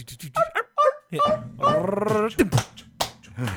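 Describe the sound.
A person imitates a small dog with a quick series of high yips, then a longer whiny, growling bark and a few more short yaps, loud.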